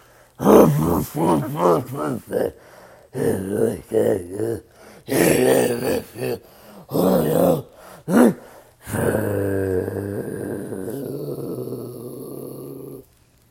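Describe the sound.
A voice imitates death metal guttural growl vocals, loud, in a rhythmic series of short snarling bursts before settling into one long sustained rasping growl.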